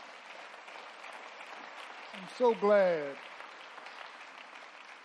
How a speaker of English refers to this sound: I'm so glad our parents didn't feel a need to be friends. Let's get the Lord a hand clap for that.